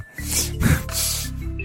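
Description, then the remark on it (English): A person makes an exaggerated, raspy nasal sniff, mimicking someone snorting cocaine: a couple of quick, loud bursts of breathy noise in under two seconds, with no talking. “Does he have a like a Coke sniff?”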